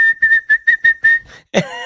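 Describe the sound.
A person whistles one steady high note in six quick rhythmic pulses, mimicking the built-in whistle sound of a Casio SK-1 sampling keyboard, then breaks off into a brief voiced sound, fairly loud.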